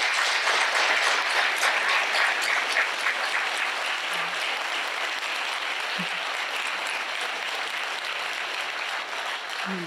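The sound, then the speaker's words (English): A sustained round of applause from a crowd at a Counterspin event for everyone who spoke that night, dense overlapping clapping that stays loud and steady for the full ten seconds, with no speech over it. “So can we give everybody who's spoken tonight a round of applause?”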